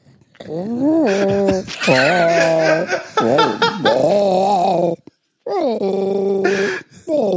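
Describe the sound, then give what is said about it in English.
A voice imitates Chewbacca's Wookiee growl in a string of loud, warbling, rising and falling moans and yowls, broken by short pauses and a rough gargle near the end. “how about, right, all three of us, we'll take the synopsis and we will split it into thirds and we will all do it in the style of Chewbacca.”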